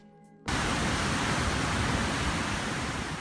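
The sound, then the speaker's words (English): After a brief quiet moment, a shower suddenly turns on and runs steadily, a loud, dense hiss of spraying water that continues unbroken to the end, with no voices. “Time to hop in the shower after that.”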